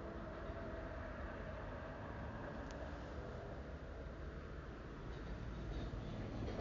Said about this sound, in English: The sound of the train reminds me of the breakthrough. There go three trains. Three train whistles. And then the commuter train. That's why I love it over here. I love the sound of the train.